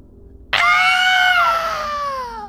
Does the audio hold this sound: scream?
yes